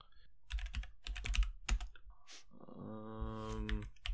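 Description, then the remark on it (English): Irregular clacking of keys on a computer keyboard as someone types up a list, a quick burst of typing for a couple of seconds, followed by a low, steady humming tone that swells briefly before fading. “I'm typing up my list here because it's kind of complicated.”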